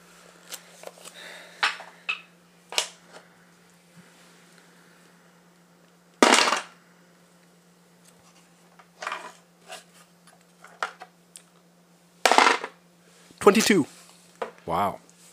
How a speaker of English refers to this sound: First roll was almost a 20, but it landed on some other dice.